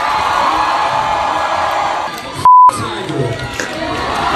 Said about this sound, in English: And then the whole crowd just gets in on it. Chanting.